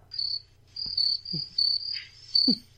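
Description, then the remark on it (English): Crickets kept in a studio chirp in steady, high-pitched pulsed trills that repeat in bursts, clear, with a few soft low thumps and a faint hum underneath. “I still have the crickets.”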